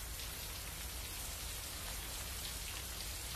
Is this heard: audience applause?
no